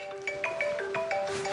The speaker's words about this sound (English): Oh, I'm sorry, my phone is ringing. Let me shut this off real quick.